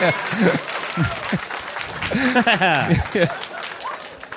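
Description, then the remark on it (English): An audience claps steadily for American volunteers who died in Rhodesia, a dense, crackling patter that lasts the whole time, while voices talk and laugh over the applause. “A lot of claps for dead Rhodesians.”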